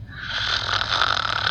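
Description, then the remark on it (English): A woman snores steadily in her sleep, a raspy, rumbling breath sustained throughout, with no talking. “And that snoring, which she insists she doesn't do, by the way, goes on until I ran out of storage space on my pad.”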